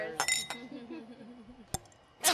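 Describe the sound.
Wine glasses clink together in a toast, a few bright ringing taps spread across a couple of seconds, with someone's voice murmuring between them.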